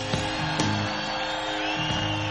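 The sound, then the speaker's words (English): An audience applauds and cheers for the crew behind the scenes, a dense, steady wash of clapping at even loudness with a few sharper whoops rising out of it, and faint sustained tones humming underneath. “Let's have a big round of applause over here for Renee Martinez that makes my guitar sing so sweet.”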